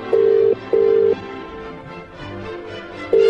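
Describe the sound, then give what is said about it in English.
Telephone tones sound on a line as a number is dialled to call King Edward VII Hospital: three steady, clear beeping bursts with short pauses between them, over faint background hiss and no talking. “So the number's going in.”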